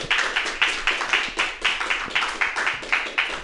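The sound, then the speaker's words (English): An audience claps steadily, a dense run of sharp, bright hand claps with a rhythmic pulse, fairly loud and without any talking over it. “you go right ahead and clap it up”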